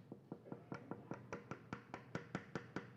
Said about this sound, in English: See, you have a door you're trying to get in. And you got all this knocking.